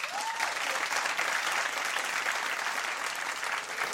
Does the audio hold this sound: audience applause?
yes